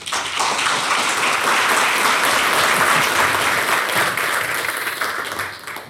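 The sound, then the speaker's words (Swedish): Sustained, steady applause from an audience welcoming a lecture on African literature, a dense wash of many hands clapping at even loudness for several seconds before easing slightly at the end. “Ja, men varm applaus.”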